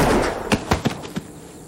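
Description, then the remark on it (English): A quick, irregular burst of four sharp gunshots cracks over a rushing, noisy background, fairly loud, before the wash of noise thins out. “Your ears are still ringing a little bit from all the gunshots and everything like that.”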